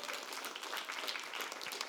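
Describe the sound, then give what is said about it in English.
A church audience gives steady applause for a couple preparing for marriage, a dense crackle of many hands clapping at once with no individual claps standing out, holding at an even loudness throughout. “Give them a round of applause one more time.”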